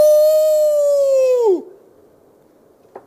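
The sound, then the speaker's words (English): A person's voice imitates a wolf howl: one long, loud, steady tone that sags and drops off sharply after about a second and a half, followed by quiet and a brief faint blip. “It's wolves out there.”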